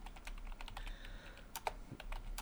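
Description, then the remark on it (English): Rapid, irregular key clicks from a computer keyboard being typed on, a steady stream of crisp taps with brief pauses and no one speaking. “I'm typing all this bullshit in and it won't even let me fucking look for it.”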